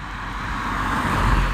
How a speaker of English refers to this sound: Some of the cars go by a little too quickly, but I will survive.